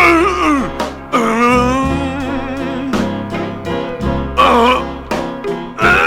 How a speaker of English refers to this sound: This is grunting, though. This isn't screaming. No, this is not. Well, this is a little screaming.